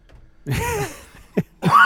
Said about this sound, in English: Stop coughing. What is, you good? What's happening here? God, you were going to blow a fucking mic out, man. Oh, face is all red.